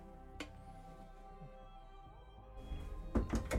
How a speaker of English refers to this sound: So the next morning, you all awaken in your various places quite early. The sun is not yet up, and you are awoken by a knock at the door.